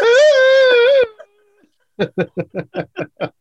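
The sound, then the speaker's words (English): A voice does a Mandy Rose whale music impression, with a loud, sustained, slightly wavering moan lasting about a second. After a brief pause, a steady run of about eight short rhythmic bursts follows, like laughter. “He's not doing his Mandy Rose fucking whale music impression.”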